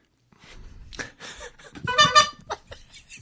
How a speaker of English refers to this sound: Honk your own horn, Bobby. Yes. That's what we do now. We all need a different horn. Yeah. So I need one that says wah, wah.